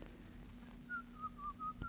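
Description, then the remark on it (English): Someone whistles a brief, lilting snippet of the tune Turkey in the Straw, a few quick notes over a low background hum, clear, with no talking. “Oh, stop whistling that turkey in the straw.”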